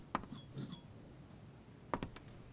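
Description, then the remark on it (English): Glasses clink together several times as champagne is served, with sharp, bright taps, one followed by a brief high ringing tone, then a quick cluster of clinks near the end. Fairly quiet, with no talking. “A glass of bubbly? Now those are the kind of bubbles I can get on board with. Cheers.”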